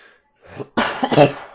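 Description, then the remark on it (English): A short inhale followed by a harsh, loud cough burst with a couple of rough pulses from a person getting over a cough, with no talking. “Sorry, I'm getting over a cough.”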